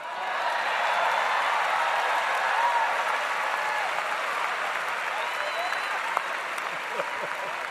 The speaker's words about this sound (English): And to the members of the City Council, and especially the 13 newly elected alderpersons, congratulations. This is your day too, and you deserve recognition, and I'm gonna turn around and clap for them.